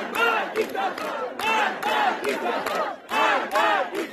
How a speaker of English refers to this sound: And then into the evening, then that's when you start seeing these videos, which have now been spreading for months. People in the streets of Tehran shouting, "Death to the dictator."